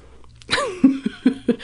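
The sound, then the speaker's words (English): A muffled, stifled burp breaks a short silence with a throaty, falling tone, followed by a few quick, low, pulsing gulps as it's held back. “I was trying to cover up a burp.”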